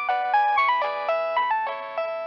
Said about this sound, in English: That's when his phone rang. It was unexpected.